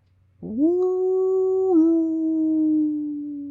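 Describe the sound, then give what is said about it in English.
A person imitates a stock cartoonish wolf howl like the one in a 1981 werewolf film's opening credits: one long, loud vocal yowl that swoops upward, holds steady for about three seconds, dips slightly midway, then trails off gently. “So I did the yowl because they have a very stock cartoonish yowl in the opening credits, and it felt appropriate this time.”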